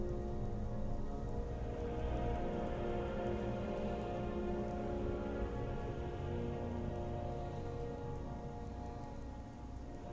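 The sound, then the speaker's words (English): Light rain falls steadily with a soft, even patter of drops on a surface. The hiss is continuous and unbroken for the whole stretch, with no voices. “the rain is not torrential, so you aren't being soaked just yet.”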